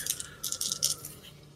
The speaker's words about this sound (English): So I got to roll damage dice for the bear.